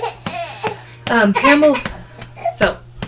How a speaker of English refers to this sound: So now, sorry about the loud pats, gotta burp the baby.